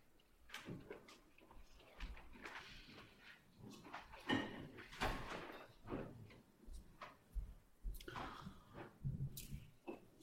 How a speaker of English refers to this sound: And then just keeping in touch with this aliveness or tenderness of heart as you please reassemble the chairs and cushions and come back to sit down.